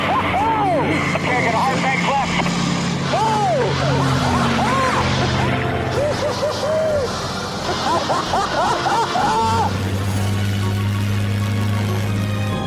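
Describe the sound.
A light aircraft engine drones steadily and loudly throughout, a constant low hum beneath several people talking over it, as the plane flies through mountain areas.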